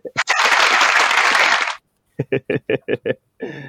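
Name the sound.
applause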